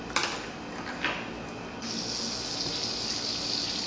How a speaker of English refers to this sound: Anyway, it's like marble soda. I'm gonna finish drinking the bloody thing.